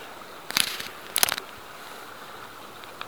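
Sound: roaring river water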